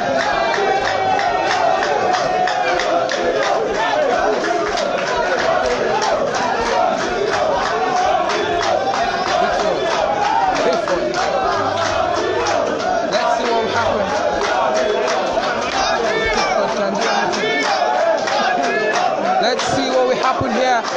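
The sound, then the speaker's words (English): A huge stadium crowd at a football match roars and chants the name of Italy's player Giorgino in unison, a loud, dense wall of voices with rhythmic surges that holds steady for the whole stretch. “Giorgino, everyone is shouting Giorgino, and this could be a chance to take Italy into the Euros.”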